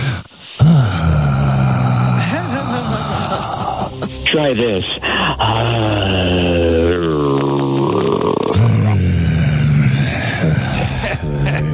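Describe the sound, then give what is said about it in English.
A man makes loud, exaggerated groaning and heavy breathing sounds, drawn-out and theatrical, with voices layered over each other and a brief spoken line. “imagine you're breathing with me.”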